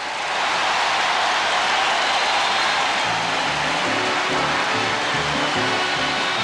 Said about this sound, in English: The clapping went on for 3 minutes straight before Jordan could speak.